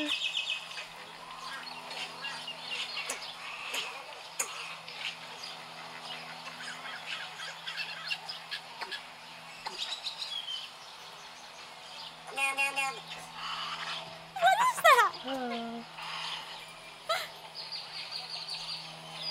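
Odd, varied bird calls: honking, warbling and squawking notes, with a louder burst of sharp rising and falling cries near the end over steady background noise.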